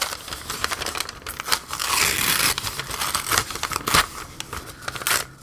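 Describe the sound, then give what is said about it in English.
Paper being ripped up and crumpled, a steady stretch of crinkly rustling broken by several sharp rips, with no voices. “This sounds like we're opening listener mail. Yeah, it's. I'm definitely not just ripping up a piece of paper.”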